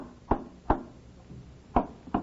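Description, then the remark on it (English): Four sharp hammer blows tapping tacks into a wooden frame, falling in two pairs with a pause between. Each strike is a crisp, woody knock with a short ringing tail, and no one speaks. A gray-haired man hammers in a kitchen corner of a house on a tiny island, fixing new screens for the porch. “At the house on the tiny island, a gray-haired man sits in one corner of the kitchen, hammering tacks into a wooden frame.”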